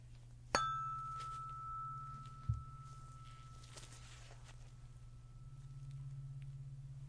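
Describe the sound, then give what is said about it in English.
A tuning fork is struck once with a sharp metallic tap during a hearing test, then rings with a steady, pure high tone that slowly fades over several seconds above a constant low hum. “just gonna use this tuning fork here. And what it does is I hit it, it makes that high ringing sound”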